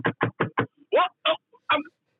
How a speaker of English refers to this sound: What? What? I can hear some knocking